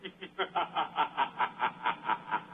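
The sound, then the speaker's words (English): A laugh sound effect: about a dozen rapid, evenly spaced snickering bursts in a steady rhythmic chuckle, moderately loud, with no talking over it. “That's my laugh sound effect.”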